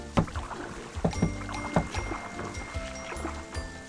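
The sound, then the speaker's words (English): Wooden knocks and soft splashes of a small rowboat on a stream being boarded at the bottom of a garden on a rainy day and shifting on the water, a few irregular thumps over a gentle watery background. “And climbs into his little boat.”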